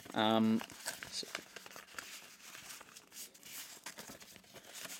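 Close, continuous crinkling and rustling of paper being handled and folded, with irregular soft crackles throughout, following a brief buzzing tone at the very start.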